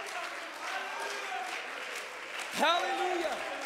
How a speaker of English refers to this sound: Oh, let's stand to our feet and clap our hands unto the Lord tonight. Come on, let's clap our hands unto the Lord right now.